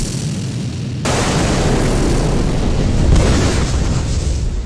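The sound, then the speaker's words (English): A loud explosion sound effect: a sudden blast about a second in swells into a sustained, roaring rumble, with a second surge of debris-like noise near the end. No one speaks. “Explosions. So, I mean, give him explosions.”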